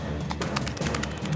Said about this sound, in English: Is there a skitter sound?